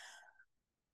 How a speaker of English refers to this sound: Sorry. A little bit of a nose ejaculation. My sneezing. Nosegasm.